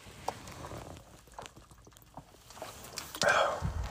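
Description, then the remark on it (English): Soft, wet mouth sounds and small clicks of someone sipping water from a water bottle, with a brief louder rustle and swallow near the end. No one speaks. “I'm just getting a sip of water.”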